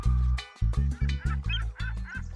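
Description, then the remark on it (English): A swan honks loudly, about six nasal, brassy calls in quick, uneven succession with no talking, as bird guests arrive at a bird party. “Hi, Mr. Toucan. Hello, Mrs. Swan.”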